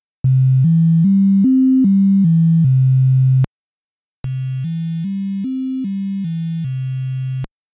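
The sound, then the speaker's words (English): Two retro console sound chips, the Famicom Disk System followed by the Namco 163 (N163), play the same short up-and-down melody as sine-like tones, one after the other with a brief gap; the first is smooth and pure, the second noticeably buzzier. “Yeah, and I mean, these numbers probably don't mean much by themselves, but to illustrate the difference, we'll start with the Famicom Disk System playing a sine wave, followed by the N163 playing a nearly identically shaped sine wave.”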